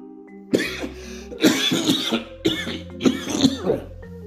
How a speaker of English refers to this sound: Ooh, look at that. Opposite. Coughed it up.